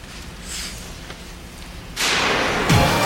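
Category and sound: nature, thunder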